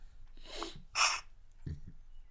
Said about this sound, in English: Do you sniff more in the morning? It sounds like we're both doing lines of coke, but we're both just...